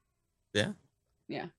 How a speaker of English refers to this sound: Yeah. Yeah. I have apparently a terrible cat has snuck into my bathroom somehow.